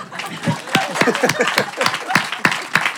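Scattered clapping from a small group, sharp irregular claps for about three seconds, fairly close, with some faint background voices mixed in.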